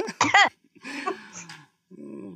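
A fairly loud burst of coughing, a sharp hacking cough followed by a rougher, breathy one, then a short low vocal sound trailing off at the end.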